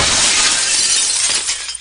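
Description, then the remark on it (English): A church's stained glass window bursts apart as someone breaks through it, in a loud, bright crash of shattering glass, followed by a spray of tinkling shards that tapers off over a couple of seconds, with no voices. “Time to burst through the stained glass window like a hero.”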